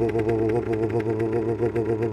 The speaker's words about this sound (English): And they all run around and they start banging on his motorcycle with their tools. And just like that, boom, starts running again.